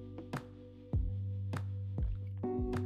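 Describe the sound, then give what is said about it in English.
A few wet sipping and swallowing sounds of water come at uneven intervals over soft, steady, looping background music, with no talking. “Let me get a sip of water here and listen to my beautiful background music that just keeps looping for eternity.”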